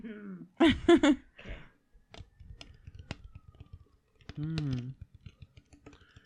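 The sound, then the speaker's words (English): An empty bottle is handled, giving a scattered run of light, hollow clicks and taps. A couple of short voiced sounds cut in near the start and middle. “An empty bottle.”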